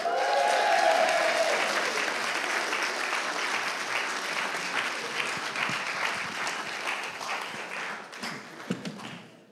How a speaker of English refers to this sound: Such amazing stories. Let's continue this round of applause